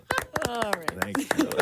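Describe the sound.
One person clapping hands on a show, in a quick, fairly steady run of about ten sharp claps, with someone's voice running underneath.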